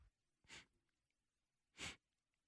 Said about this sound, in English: I've already practiced my sniffles. Like, here's my sniffles.